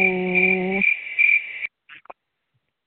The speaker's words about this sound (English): Crickets.